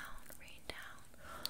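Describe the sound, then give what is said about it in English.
Two quick, soft hissing puffs of a pink grapefruit perfume mist atomizer, one midway and one near the end, over quiet whispering throughout. “Let me just spray that all over you.”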